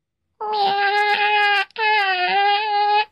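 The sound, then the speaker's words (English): A cat gives two long, loud, drawn-out meows back to back, each a steady whiny tone with a brief pause between them, no talking over it. “That's this is the most important meow for me, and it's the I need help wiping meow.”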